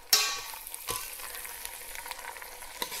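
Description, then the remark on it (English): Pasta drops into a hot frying pan of pesto being heated with oil, with a sudden burst of bright sizzling, then a steady crackling hiss continues, broken by a couple of soft stirring knocks. No one speaks. “Maybe bring up some of the flavor, maybe a bit more oil actually. And I'm gonna add my pasta in.”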